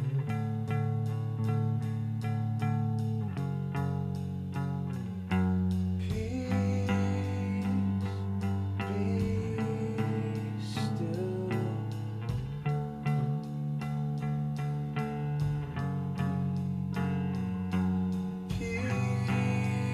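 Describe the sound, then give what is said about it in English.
Slow, sustained orchestral music with deep, resonant bass notes anchoring the low end, layered harmonies swelling gradually at a steady, fairly loud level, with no voices. “I mean, those bass notes.”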